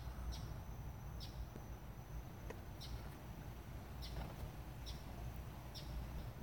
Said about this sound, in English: What's that chirping? Like the buzzard. It's the American condor.